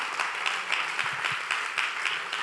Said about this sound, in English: If you're a Jesus person, clap right now and thank God.